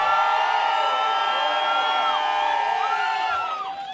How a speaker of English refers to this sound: The audience applauds both producers